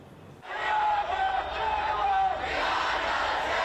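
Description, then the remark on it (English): A large crowd of protesters in Louisville chants Breonna Taylor's name loudly in unison in the early evening, voices rising in a sustained, rhythmic roar that swells after a quiet start and holds steady, with no single speaker standing out. “Voices chanting her name filled the air in the early evening.”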